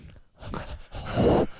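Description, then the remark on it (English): Heavy breathing right into a microphone: two loud, rushing breaths, the second longer and stronger, with no talking. “You're all your noise is breathing into the mic right now.”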